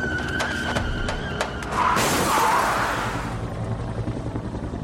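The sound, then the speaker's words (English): Sharp rapid bangs of gunfire ring out as bullets hit a car from the side before a bridge, then tires let out a loud squealing skid as the car spins out of control, engine roar and rumbling noise continuing steadily afterward. “Harris lost control of the car and spun wildly.”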